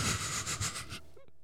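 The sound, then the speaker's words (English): A loud, rough nose blow into a microphone lasting about a second, a harsh breathy rush that pulses a few times before cutting off, followed by a faint sniffly squeak and a click. “And now I'm going to blow my nose all over this mic.”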